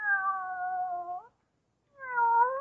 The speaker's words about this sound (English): Here, kitty, kitty, kitty, kitty, kitty. Oh, you listen, won't you? Nice, kitty.